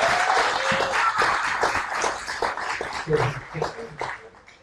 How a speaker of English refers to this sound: Can I get more than 4 claps? Come on.